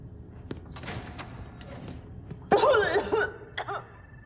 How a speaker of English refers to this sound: Before Commander Tucker passed out, he started coughing. Are you feeling any other symptoms?